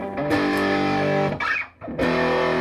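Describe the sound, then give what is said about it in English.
Heavily distorted electric guitar chords played through an Orange amp ring out loud, with a thick saturated amp tone, a brief choppy break in the middle, then another sustained crunchy chord. “I mean, I don't need a distortion pedal. Listen to that.”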